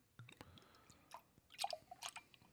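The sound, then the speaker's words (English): Thick, viscous 12% ABV Prairie Artisan Ales Birthday Bomb beer pours into a glass in uneven glugs and wet splashes with no head forming, a quiet, irregular burble with brief dripping pops and no voices. “And get with the pour.”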